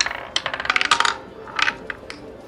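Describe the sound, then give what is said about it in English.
A small hard ball clatters and bounces across a roulette wheel in a counter spin, a fast burst of bright ticks that slows into a few scattered clicks as it drops into pocket 24. “you see the ball start doing a counter spin.”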